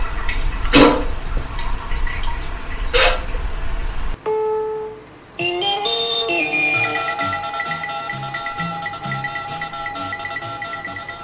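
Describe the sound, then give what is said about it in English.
A machine's running water sound effect runs steadily for about four seconds, with two brief louder gushes, then cuts off and gives way to a musical passage of sustained tones. “Simply hook up to child under 6 or psychopath and wait for the running water sound.”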